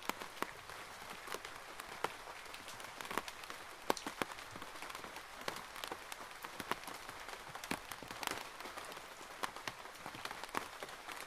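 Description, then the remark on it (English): Heavy rain drums steadily on the glass roof of a gallery, a dense hiss broken by countless sharp, irregular tapping drops, continuous with no voices. “when it's raining like crazy, you hear this kind of like shh, like ASMR noises in the gallery and on the glass roof”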